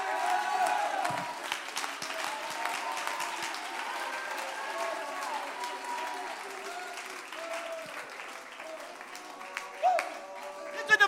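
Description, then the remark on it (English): An audience at a morning service, told to jump to their feet, clap their hands and shout, claps and shouts together: a dense wash of steady applause with voices raised over it, holding fairly even loudness for about eleven seconds with a few sharper bursts near the end. “Jump to your feet, clap your hands and shout.”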